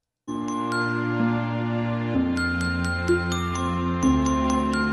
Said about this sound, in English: So a YouTube … put out this hit song we all know in the form of a lullaby.